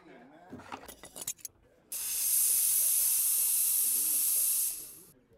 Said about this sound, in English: Does that sound like we're several hundred feet in the air, adventuring through exotic lands, all in the pursuit of glory? Because to me, it sounds like a dime store steamer at best.